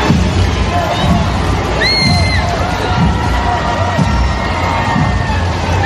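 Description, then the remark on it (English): A large crowd cheers steadily at the 96th annual Macy's Thanksgiving Day parade on West 58th Street, New York City: a loud, continuous roar of voices with shrill whoops and whistles rising above it now and then, and no single voice speaking clearly. “down in New York City for the 96th annual parade for Macy's Thanksgiving.”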